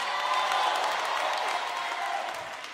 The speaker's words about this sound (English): Come on, clap like I'm talking to you.